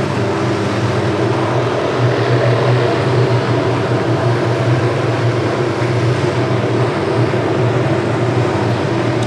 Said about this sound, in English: There comes a helicopter. Yeah. 1 second, we got a helicopter. How's the noise canceling with these? I don't know. Like, will we be able to hear this still? Yeah, no. No, not well. Not good. That's a little loud. That's a big helicopter.